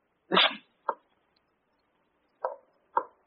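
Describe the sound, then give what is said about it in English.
Four heavy, uneven footsteps of a lame man in the attic fall in two pairs with a long pause between, a thump followed quickly by a lighter step, a limping gait. No voices are heard. “Coming from the attic. Footsteps of the lame man.”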